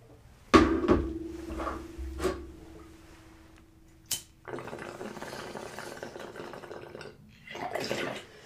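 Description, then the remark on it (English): Someone handles a water bottle with a few clunks and a brief ringing tone, then takes a couple of noisy sips of water, with a short pause between them. No one speaks. “Chill, let me drink water.”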